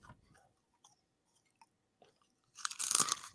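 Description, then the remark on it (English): Colonel's Gourmet Popcorn being crunched and chewed: a few faint, scattered clicks at first, then a loud, dense burst of crisp crunching near the end. No one speaks. “Can we hear the crunch? That stuff is delicious, right?”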